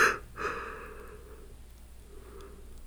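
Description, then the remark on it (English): A single yawn: a sharp breathy intake followed by a drawn-out, softly voiced exhale that trails off into quiet breathing. “God, I keep yawning.”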